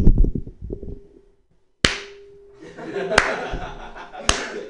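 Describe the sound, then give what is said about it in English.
A single person claps hands a few times, sharp isolated smacks spaced irregularly, with voices and murmuring underneath. “I understand why you're clapping because you're happy to be alive.”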